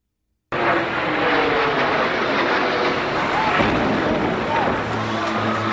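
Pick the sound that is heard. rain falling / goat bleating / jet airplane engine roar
jet airplane engine roar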